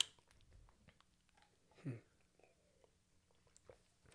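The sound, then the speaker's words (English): A single wet gulp of someone swallowing water, brief and low, with quiet background and a few faint mouth and handling noises. “I don't like how you swallowing that shit.”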